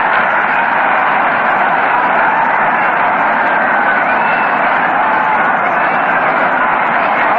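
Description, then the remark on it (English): A big baseball stadium crowd roars steadily and loudly after a two-base hit into right field, a dense, unbroken wall of cheering voices that holds for several seconds, slightly muffled and narrow in tone like an old broadcast recording. “Listen to that roar of the crowd.”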